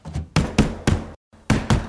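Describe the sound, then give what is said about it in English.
Firm, loud knocking on the door of a barn house: three solid raps, a short pause, then two more, with no voices. “Who is it? You open the damn door or I'll open it.”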